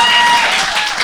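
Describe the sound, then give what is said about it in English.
A burst of audience clapping, dense and steady, filling the whole short moment at a fairly loud level before easing slightly near the end. “You can clap for it. Yeah, do it.”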